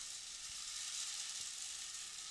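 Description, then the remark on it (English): A rain stick is tilted, its beads cascading in a steady, dense, bright rattle that sounds like a continuous hiss for about two seconds, with no one speaking. “Oh, I've left my rain stick there?”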